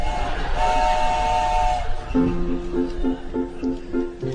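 An Amtrak passenger train bound for Seattle, about 30 minutes from arrival in the afternoon, rumbles along steadily, a sustained horn-like tone sounding briefly before a series of evenly spaced, mid-pitched tonal pulses repeats over the constant rolling noise.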